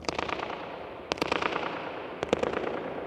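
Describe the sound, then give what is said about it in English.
Sharp hand claps and a foot stamp on the floor crack out in three quick clusters inside a dome, each followed by rapid, fluttering echoes that bounce, focus back to the person making them, and linger in the large, highly reverberant domed space. No one speaks. “And if I clap on the floor, bang on my foot.”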